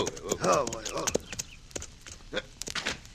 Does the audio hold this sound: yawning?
no